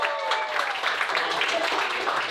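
An audience at a comedy show claps steadily for a couple of seconds to vote for a comedian of the evening, a dense, even wash of hand claps with scattered voices whooping and cheering through it.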